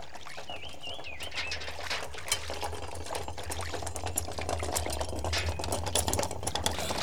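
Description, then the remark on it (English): Water gushes steadily into a water tank, a continuous churning rush over a low rumbling hum, with a faint bird chirp early on. No one speaks. “were sent to fill one of the water tanks”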